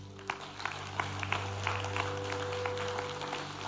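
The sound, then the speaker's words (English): A church audience applauds steadily, a dense patter of many hands clapping at moderate volume over a constant low electrical hum, with no one speaking. “And I think that needs some encouragement and a round of applause.”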